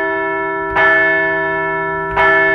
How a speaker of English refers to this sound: Let's ring the bell one more time for those fans who filled up the stands.